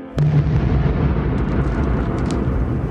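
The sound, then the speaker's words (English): An explosion: a sudden deep boom bursts out and rolls on as a loud, rumbling low roar, like thunder, with faint crackles scattered over the sustained blast. “Sounds like thunder.”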